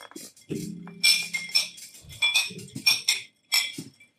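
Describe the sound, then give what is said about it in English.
Glasses clink together several times in quick succession, each bright ring briefly hanging in the air, with a faint low murmur in the background. “Cheers, cheers.”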